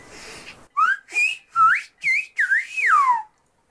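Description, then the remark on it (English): A whistler mimics English speech with a series of about five or six short, gliding whistled phrases, sliding up and down in pitch like syllables of a spoken sentence, clear with brief gaps. “Like, take a listen to these recordings of whistled English”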